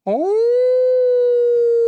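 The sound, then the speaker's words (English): A person imitates a wolf howl: a single loud, sustained voiced note that swoops up at the start and then holds steady for nearly two seconds. “Oh, that's my howl.”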